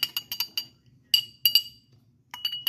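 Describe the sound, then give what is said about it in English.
Big ice cubes from acrylic ice trays clink against a cocktail glass in quick clustered bursts of bright, high-pitched taps as a drink is stirred, pausing briefly between rounds of stirring, with a soft low rumble underneath. “big ice cubes. Yeah, I think I got some off Amazon for less than $10.”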